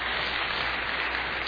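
A crowd applauds steadily for a speaker's 50 years of marriage, a dense wash of many hands clapping at once with no break, fairly loud and continuous throughout the short stretch, with no voices standing out.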